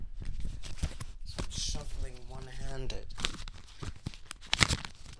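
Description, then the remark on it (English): Tarot cards shuffled with one hand while the other hand holds a microphone, a dry, papery rustling with irregular clicks and flicks throughout; a voice is heard briefly partway through, and the card sounds continue around it. “And so I'm shuffling the cards.”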